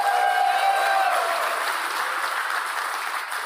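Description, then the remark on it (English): Steady applause from an audience clapping for Jesus, a dense wash of many hands clapping at an even, sustained loudness that tapers only slightly toward the end. “We're going to clap. Let's just clap for Jesus.”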